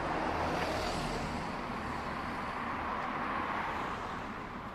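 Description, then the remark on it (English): A bus arrives and passes someone walking along a quiet street of terraced houses early in the morning, its engine a low, steady roar with broad road noise that stays loud for several seconds before easing slightly as it passes. “As I continue to walk along now, grateful for the peace and quiet, now to be shattered slightly by the arrival and passing of a bus.”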